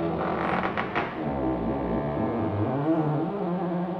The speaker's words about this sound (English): Didn't you hear that creaking all night? Creaking? What kind of creaking did you hear? Oh, it was awful. The house was creaking all night.